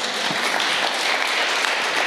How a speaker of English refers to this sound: Let's rise to our feet. Yeah, if you're clapping, clap for Jesus.